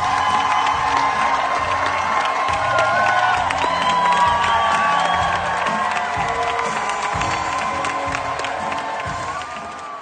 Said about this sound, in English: Yeah, so in case anyone's wondering, that's what 7 standing ovations sounds like. That's so many standing ovations.